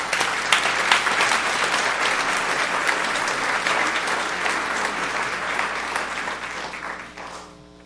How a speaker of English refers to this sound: And let's also give all moms everywhere, grandmothers, mother figures, a round of applause.